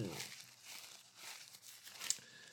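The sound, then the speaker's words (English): Someone blows their nose into a tissue in several hissing, honking bursts, with faint crinkling of paper between the blows and a sharp little snort near the end. “I'm gonna blow my nose.”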